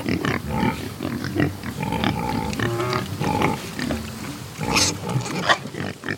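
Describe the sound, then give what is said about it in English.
Dozens of black Iberico pigs grunt and snort in a steady, overlapping jumble, with occasional higher squeals and snuffling sounds as they root around in the dirt and wallow in muddy puddles under a pecan tree in Georgia. “Finally, we get to what I really came here to see. Iberico pigs. Dozens of them.”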